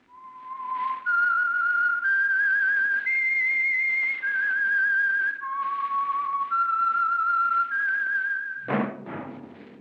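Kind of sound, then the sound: signal or alarm, whistled signal tune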